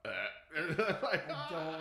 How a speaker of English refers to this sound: I think there was a burp. I heard a burp. It was like near the beginning. He's like, rah, rah, rah, rah.